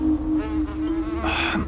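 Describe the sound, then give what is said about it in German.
A wasp buzzes in a steady, continuous drone that swells briefly brighter near the end, with no voices, just the insect's hum. “Wenn da nur nicht diese hartnäckige Wespe gewesen wäre.”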